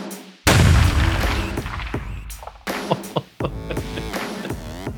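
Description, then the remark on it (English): A loud firework blast erupts, followed by a sizzling, crackling tail and two more sharp bursts a few seconds later, with no voices. The firework is set off by touching a metal mesh glove to a bolt on a control panel wired to it. “And every time you touch your glove on a bolt on this control panel, it would set off a firework.”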